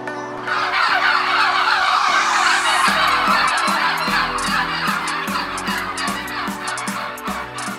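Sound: turkeys gobbling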